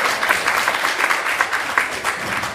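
Steady applause from a group of people, a dense crackle of many hands clapping at once, fairly loud and continuous for a couple of seconds with no voices over it.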